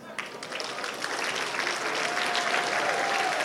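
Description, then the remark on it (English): A crowd claps steadily, the dense applause swelling slightly in the first half-second and then holding at an even, sustained level with no voices standing out. “I want you to applaud them.”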